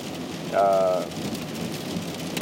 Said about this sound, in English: Well, alright, so let me think of a way to close this, because it's raining, and I know you guys can probably barely hear me.